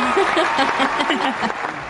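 A short burst of steady, dense clapping with voices laughing and whooping on top, holding at an even loudness for about two seconds.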